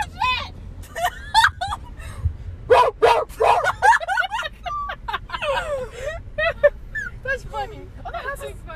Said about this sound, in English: Oh, we know, Lacey. We know. Bark, bark. Bark, bark. Bark.